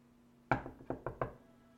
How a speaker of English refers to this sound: I'm going to knock on Pat's door. There's no answer.